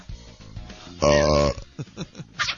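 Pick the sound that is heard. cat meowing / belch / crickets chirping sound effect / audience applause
belch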